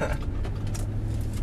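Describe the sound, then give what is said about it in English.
A steady low engine rumble and road drone fill the cabin of a moving car, the speaker's mom's car, constant and fairly loud, with faint rattles on top and no one speaking. “we're not in Hunter's car. We're in the, what's your mom's name? Candy. We're in the can mobile”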